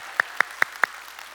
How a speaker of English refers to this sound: Okay, I'm going to clap myself right there.